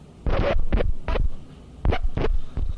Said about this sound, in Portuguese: E nós riscamos os discos em protesto.